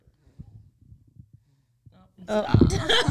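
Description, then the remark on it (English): A baby snoring softly in short, low, rhythmic breaths, then suddenly breaking into a loud, harsh, snorting burst that fills the last second. “In case you guys never heard a baby snore.”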